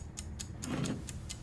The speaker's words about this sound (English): You said this was the most important thing, and I can give you any answer you want, but I have started the clock.